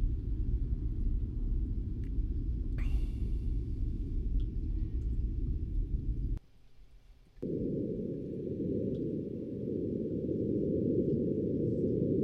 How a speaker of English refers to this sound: It said sounds of Mars, which is cool. For the first time in history, we can hear what it sounds like on another planet, and it sounds like this.